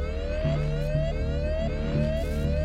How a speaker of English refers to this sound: Wait! What is it? The alarm from Mr. Augustine's sensors.